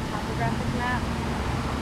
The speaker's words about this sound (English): So this is my favorite fountain in Los Angeles. I thought the other one was. It actually is water that spills from those inlets, and it spills down the facade.